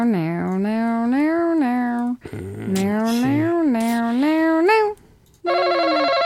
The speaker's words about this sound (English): Everybody, where's my game show sound effects? I have game show sound effects for this.